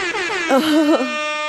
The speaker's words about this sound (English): Ah, I love that we have an air horn. I know. Anytime is the red button if you want to press it at any point.